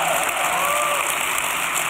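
An audience applauds for the speaker's wife of 51 years as she is invited up to the mic, in a dense, steady wash of clapping that holds at an even, fairly loud level throughout, with no voices cutting through.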